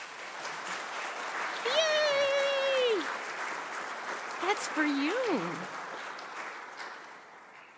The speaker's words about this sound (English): So, my friends, I present to you the newest member of this household of faith, blessed by baptism and brought to you for your care and joy and celebration. Would you greet her with applause?